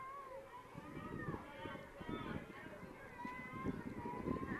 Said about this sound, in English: Boy, wind really starting to gust and howl right now. The dust and dirt blowing in the infield.